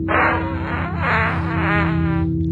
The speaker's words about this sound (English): And if you can see the window, just imagine breaking it with your fart.